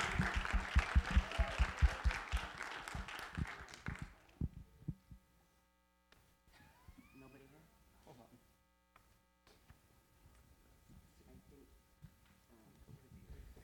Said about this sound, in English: And please have a round of applause for both of them.